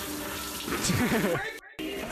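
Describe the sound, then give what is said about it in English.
Shower water runs in a steady hiss as a man showers wearing sunglasses, with a voice briefly rising over it midway before a short dropout and the spray resumes. “Different shower clip. He showered with regular sunglasses on.”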